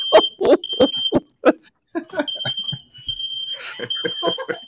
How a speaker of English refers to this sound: My wife is cooking and just set off the smoke alarm.